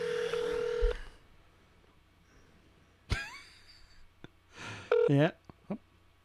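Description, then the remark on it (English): A phone call being placed: a steady phone tone opens, followed by a sharp click and a few short electronic beeps and chirps, with brief voice-like sounds in between, moderately loud. “All right, let's call the president. Let's see if she answers the phone.”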